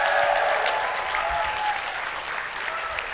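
An audience bursts into sustained applause, a dense, steady wash of clapping hands that holds at a loud level throughout, easing only slightly toward the end.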